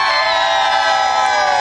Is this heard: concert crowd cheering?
yes